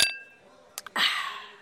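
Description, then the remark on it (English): Glasses clink together once in a toast, a bright chime whose ring fades over a fraction of a second, followed by a couple of soft knocks and a steady rushing sound. “Here, to besting me. Cheers.”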